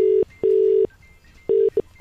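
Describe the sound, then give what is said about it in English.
Steady electronic telephone tones beep in loud, evenly pitched bursts, a short pulse, a longer one, a pause, then two more quick pulses, like a call ringing through on the line, as a wake-up call is placed. No voices. “Today, Rob was getting the wake-up call. This happened earlier. Let's see how it went.”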